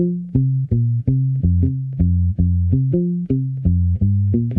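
A bass guitar plays palm-muted notes in a steady, walking rhythm, about a dozen deep, round plucks shifting between low pitches, with no voices over them.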